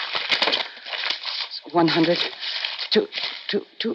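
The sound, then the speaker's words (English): Papery riffling and crinkling as a stack of bills is flicked through quickly, close by, with a few brief low voice sounds mixed in partway through. “Sure you want to count it. But you find it's all there.”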